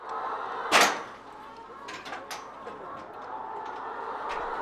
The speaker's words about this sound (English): it's time for Wendy to open the barn door